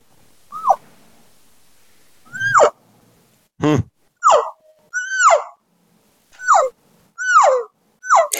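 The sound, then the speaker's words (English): A voice quietly imitates a cow elk call with tight, closed lips, giving about eight short, muffled mews, each sliding down in pitch, with pauses between them and no talking. “But I'll show you guys, like, how to quietly cow call the easy way.”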